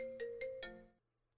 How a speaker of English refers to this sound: It's hard to keep a groove, man, when the damn phone keeps ringing and I gotta go. Oh, there it is again.